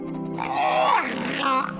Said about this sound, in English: It's a whale.